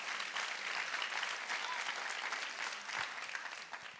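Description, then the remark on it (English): An audience claps together to thank God for his grace, in a steady, dense wash of applause that holds at an even level throughout, moderately loud, with no voices on top. “Come on, clap together and thank him for his grace.”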